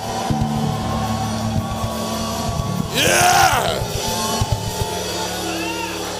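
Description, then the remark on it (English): A brief burst of shouting and cheering from a crowd rises for about half a second amid low background noise, with a single voice calling out. “The Bible says that clap your hands, all ye people, and shout out to God with a voice.”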